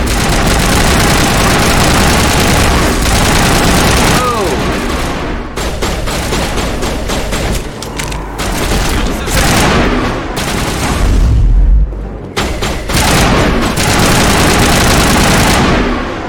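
Dense, continuous video game gunfire: rapid bursts of shots layered over a loud, low engine rumble, with a brief rising whine partway through and no speech.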